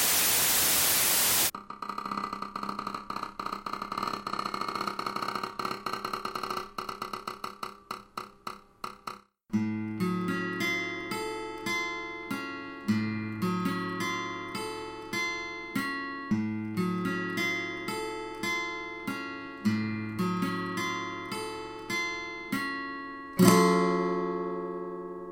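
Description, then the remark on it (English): A loud burst of radio static opens, cutting to rapid crackling clicks that speed up before giving way to a steady electronic tone pattern, then another noisy burst at the end. “Static grips the airwaves once more”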